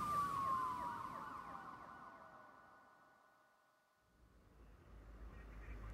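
An emergency vehicle siren holds a steady wailing tone that slowly drops in pitch as it passes down a road, loud at first then fading, before road rumble swells again.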